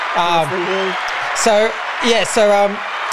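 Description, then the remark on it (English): A crowd cheers, with several loud sliding whoops and shouts rising above a steady wash of noise that carries on for about three seconds. “The crowd went a bit too long then.”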